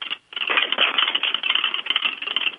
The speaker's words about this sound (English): You hear the lock on the door? Mm-hmm. I think Thomas is mad that I shook his door because as soon as I did that, the K2 lit up.